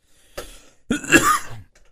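A person coughs twice: a short, light cough followed by a longer, harsher, raspy one. No one speaks.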